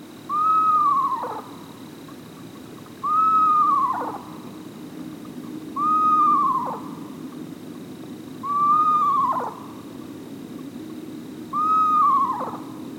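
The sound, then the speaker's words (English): Five wavering, descending whinny-like calls of an eastern screech owl repeat at steady intervals, each lasting about a second, clear against a low background hum with no one talking. “Well, the answer is an eastern screech owl.”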